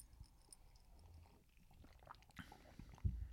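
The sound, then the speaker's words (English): Quiet mouth sounds of someone sipping and swallowing a drink, soft wet gulps with a slightly louder swallow near the end, no talking. “You just took it like a shot? I just took a sip.”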